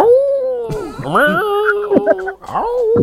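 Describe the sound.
A person howls like a wolf, a loud, drawn-out vocal wail that slides up and down in pitch for about three seconds with a few wavering breaks.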